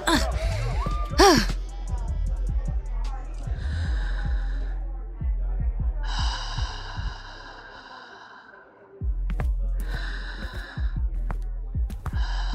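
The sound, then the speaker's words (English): Slow, deliberate deep breaths: several long, loud inhales and exhales in a steady rhythm, each lasting a second or two, over a faint murmur of background noise; someone doing breathing exercises at a party. “Are you doing breathing exercises at a party?”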